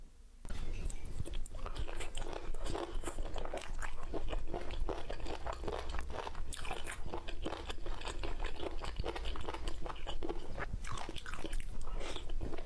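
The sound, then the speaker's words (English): Loud, continuous crunchy chewing and biting from an ASMR food TikTok video, with sharp crackly bursts repeating in quick irregular rhythm, no talking throughout. “So, yeah, there's going to be all sorts of eating.”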